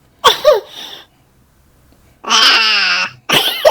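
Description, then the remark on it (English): Loud bursts of wet, phlegmy, mucousy coughing: a couple of quick hacks, a pause, then a long strained rasping cough and a final harsh burst, with no talking. “Yeah, even the cough. I'm sorry, folks. It's quite mucousy.”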